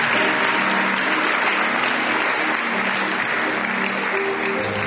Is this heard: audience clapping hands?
yes